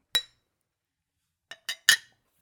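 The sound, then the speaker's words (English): Beer glasses clink together in a toast: one sharp ring, a pause, then three quick bright clinks, with no talking over them. “I also started a new beer. I didn't know that it was going to be a thing. Double cheers.”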